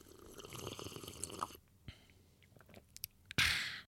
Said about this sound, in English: Take your sip and then bring us back in.